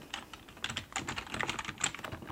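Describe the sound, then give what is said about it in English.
Soft, steady typing on a computer keyboard while making a reservation at a bed and breakfast check-in: a quick run of light clicks and taps with no voices, the keystrokes coming in uneven bursts at a low, gentle volume. “soft spoken, gentle typing”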